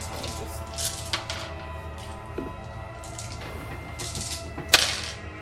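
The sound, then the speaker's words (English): Six dice are rolled for a Guts Courage check in a tabletop game, clattering across the table in a few scattered bursts of sharp clicks and knocks, with one louder rap near the end, over a steady low background hum. “That's 6 dice. 2 7s.”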